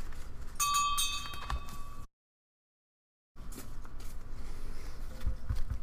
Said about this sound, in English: Give them a bell ring.